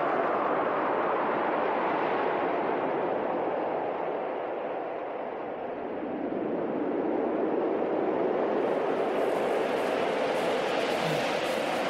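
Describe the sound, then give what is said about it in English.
Heavy, roaring wind blows steadily for the whole stretch, a thick rushing wall of noise with a faint rising whistle later on, like a blizzard howling. “Bear that weather, man.”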